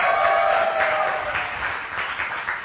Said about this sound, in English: Why don't you give that worship team a big round of applause? Didn't they do awesome?